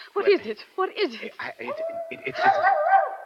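A mad dog snarls and whines in short, harsh bursts, then lets out a long, wavering howl, close and fairly loud, with no talking over it.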